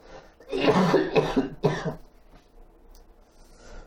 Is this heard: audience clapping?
no